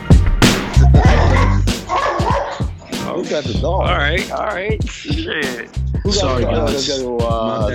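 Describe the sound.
Repeated dog barks and yips come through loud, in quick irregular bursts, mixed with overlapping voices and whimpering sounds throughout.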